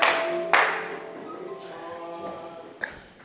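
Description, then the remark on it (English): An audience claps their hands together for Jesus in a brief, dense burst that quickly fades, while soft sustained musical tones linger underneath, with a couple of sharper knocks scattered through. “Clap your hands together for Jesus and please be seated.”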